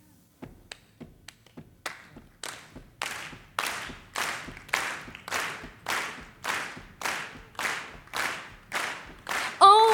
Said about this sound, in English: So in that spirit, it's a celebratory song, the musical part, and we would love for you to be a part of it. Please feel free to clap along.